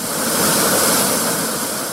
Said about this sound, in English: USS Kentucky rising to the surface off the coast of Hawaii. Nearly 2 football fields long, it is the deadliest engine of destruction in the American arsenal, able to carry almost 200 nuclear warheads atop the missiles loaded beneath those hatches.